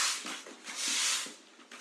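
Soft, hissy bristle strokes of a broom sweeping a floor, swelling and fading in a loose rhythm of several brushing passes, with no voices.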